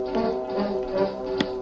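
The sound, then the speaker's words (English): A single sharp chop of an axe striking a tree being felled to build a raft lands near the end, cutting through a steady, droning tonal background that plays throughout. “There's a good tree to knock over first. Where's my axe? Let me at it.”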